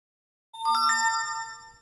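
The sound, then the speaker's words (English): A phone notification chime for a text or Teams message, with the phone set just above its lowest volume, sounds after a moment of silence: a quick cluster of bright, bell-like tones that ring out together and fade gradually, fairly loud. “Just notify my phone of something.”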